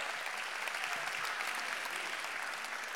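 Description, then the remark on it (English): An audience breaks into sustained applause for mothers, a dense, steady wash of many hands clapping at an even loudness throughout, with no voices rising above it. “Go ahead, clap for the moms.”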